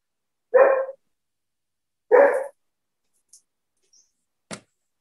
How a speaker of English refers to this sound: What type of a dog is that one? It sounds like a pit bull. German Shepherd. Oh, I know dogs.